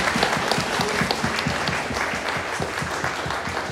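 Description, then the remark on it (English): An audience applauds the finalists of a games tournament as they come up on stage, a dense, even wash of many hands clapping at a loud, sustained level throughout, with no voices standing out. “A round of applause for our finalists.”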